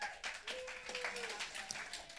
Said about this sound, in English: Those of you who took part can come and get some off me at the end. Go and sit back down. Can you give these guys a round of applause?